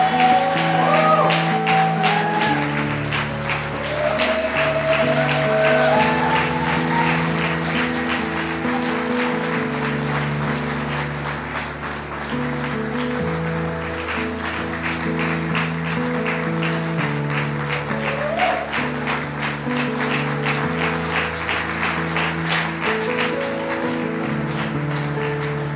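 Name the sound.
audience applause and cheering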